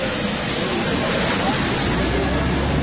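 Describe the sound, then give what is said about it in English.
A loud, steady roar of water surging from the launch of a big boat, a dense continuous rush that holds at the same strength for the whole few seconds without letting up. “Yeah, watch, here comes the water.”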